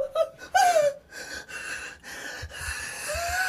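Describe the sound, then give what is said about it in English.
Heavy, ragged breathing of a scared, kidnapped person, a quick run of gasping breaths with faint squeaky, whimpering edges, continuing steadily for a few seconds with no talking. “I can hear you fucking heavy breathing.”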